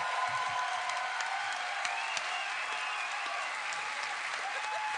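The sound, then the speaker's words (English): An audience at a live Harmontown show claps steadily for the whole stretch, a dense, even wash of many hands with no pauses and no voices breaking through. “It's a little misleading, but I'll take the applause.”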